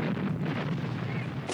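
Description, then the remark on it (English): A dense, continuous din of battle between British Columbia and Alberta forces on the highway north of Kamloops: rapid gunfire crackling over deep, rumbling artillery booms, loud, with no pauses across the short stretch. “The fighting lasts into the night, red tracer rounds lighting the darkness in a hypnotizing display more dazzling than any fireworks.”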